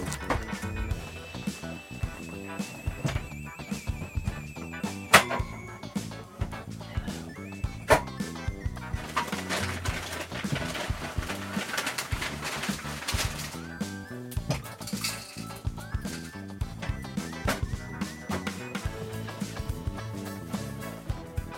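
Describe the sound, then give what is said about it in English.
A very old hamster that has lost most of its hair rustles and scrabbles about with a steady stream of quiet scratching and small clicks, punctuated by a few sharper knocks as it upends its bowl. No one speaks. “The hamster is making noise again.”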